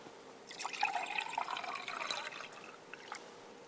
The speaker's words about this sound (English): In the same way, after supper, he took the cup and he poured it.